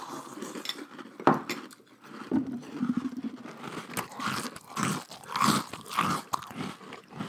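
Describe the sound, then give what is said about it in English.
Close-miked crunching of a mouthful of Cap'n Crunch cereal with milk, with repeated crisp, irregular chewing crackles and a few sharp louder bites, heard alone without talking. “Sorry, but I wanted you to hear the crunch. I'm holding the microphone really close to my mouth.”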